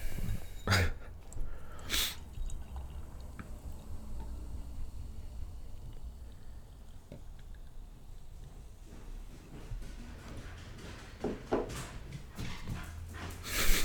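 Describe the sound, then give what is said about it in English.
A female dog thunders down a staircase, her heavy paws thudding in irregular bursts, with snorts and panting breaths over a low background rumble. “She sounds like a train. I know. Just thundering down the stairs.”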